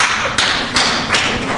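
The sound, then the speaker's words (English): A church audience claps together in a dense, steady burst of applause, answering a question about who misses English class. No voices; fairly loud and even, with a few stronger surges roughly every third of a second. “How many miss English class? By round of applause.”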